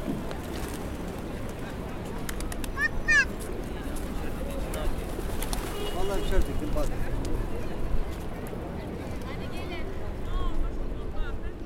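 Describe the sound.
Pigeon wings flutter in repeated soft bursts all around, over a steady bustle of busy Taksim Square in Istanbul, Turkey, with occasional bird chirps and murmuring voices.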